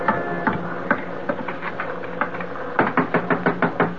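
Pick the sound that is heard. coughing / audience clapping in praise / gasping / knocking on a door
knocking on a door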